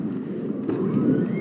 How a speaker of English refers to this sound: About 24 cars now are pulling up next to this herd. seems like a perfect example of humans and nature right next to each other here.